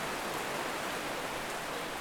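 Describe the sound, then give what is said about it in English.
Steady rain falls outdoors on old cars parked in the open at a motoring event, in a continuous, even hiss, with a dense patter of drops spread evenly across the whole moment and no voices. “It's raining, definitely raining.”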